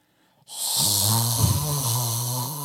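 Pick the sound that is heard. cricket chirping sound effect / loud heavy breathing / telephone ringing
loud heavy breathing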